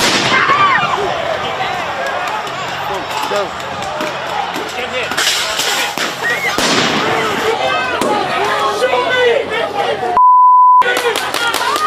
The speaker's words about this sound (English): And this is what you hate to see. There are people throwing fireworks and who knows what else.